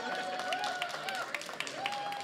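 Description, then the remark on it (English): An audience at the Sanctuary church community claps steadily for the speaker in a dense, continuous patter, with voices and a few rising whoops or cheers carried over the applause throughout. “That's awfully nice, and 1/4 of everybody in here to clap for me.”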